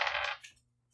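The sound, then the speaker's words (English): Dice clatter across a hard tabletop in a quick, bright rattle, fairly loud, then settle with a faint final click as the sound dies away. No one speaks. “These dice be not good for you today.”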